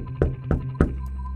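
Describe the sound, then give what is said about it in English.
Three firm knocks on a door in a quick, even rhythm, fairly loud, over a low steady hum with no one speaking; officials knocking to serve a warrant for a raid on radio station offices. “They knocked on the door, they rung the doorbell.”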